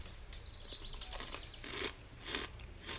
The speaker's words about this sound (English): Listen to that crunch, right? It's very crunchy. It's very good. And I think the chocolate flavor is better. The cocoa flavor.